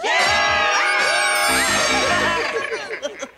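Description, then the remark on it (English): A group of people screams together, a loud, chaotic tangle of overlapping shrieks and yells that holds steady for a couple of seconds before breaking into scattered, fading cries. “More of their screams can be heard from outside your doors, sometimes even sounding of maniacal laughter.”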